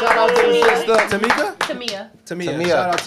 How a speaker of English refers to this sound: Oh, word. Clap it up, bud. Shout out to the sister.